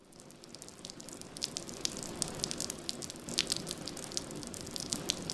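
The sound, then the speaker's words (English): A rain shower in South Florida patters down with a continuous hiss, dense scattered droplets and occasional sharper drips striking surfaces, even throughout, with no voices. “Rain, like this recent shower here, helps fill South Florida's freshwater bodies, which ideally soaks into the ground to recharge or refill water aquifers, and that way leave less room for the salt water to seep in.”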